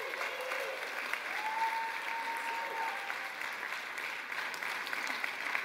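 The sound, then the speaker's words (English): A church audience claps for its Stephen ministers as they walk up to the front, a dense, steady wave of applause that holds at an even level for about six seconds, with no one speaking over it. “Can we clap for them as they come up?”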